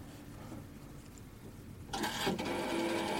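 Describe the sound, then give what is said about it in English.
An old rotary phone dial turning: a low mechanical whirr gives way to a louder burst of rapid clicks and rattling as the dial spins back. No voices. “When you did the old dial phone the other week”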